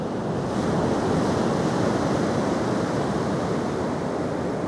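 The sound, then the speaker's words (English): Ocean waves wash onto a beach in a steady, full roar of surf, fairly loud, with a constant hiss and rumble and no voices throughout. “So, Rebecca Ramirez, almighty producer, cue the waves.”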